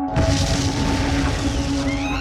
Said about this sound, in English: It was a huge explosion. We're not sure who had been injured, how many people had died.